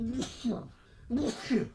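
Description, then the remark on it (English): Two fairly loud sneezes about a second apart, each a voiced intake ending in a sharp breathy burst. They sound deliberately performed, like a voice imitating a sneeze. “There, I sneezed for you.”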